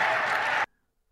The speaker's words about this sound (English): They're still cheering. They're still cheering in Phoenix. They're just so happy. They're just so happy in Phoenix.